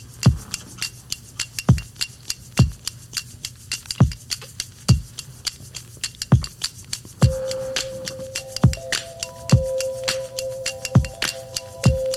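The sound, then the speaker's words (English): Sharp, crisp hand claps in a song recording repeat at a steady beat, then come faster and denser. A sustained mid-pitched tone joins in partway through beneath the clapping. “I like the clapping. Those are my hands.”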